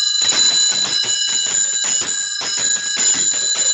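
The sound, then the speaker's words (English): Sleigh bells shaken in a quick, steady rhythm, a bright, continuous jingle with a ringing metallic shimmer, loud, with no voices. “can I do my sleigh bells now? Yes, we have to hear your sleigh bells.”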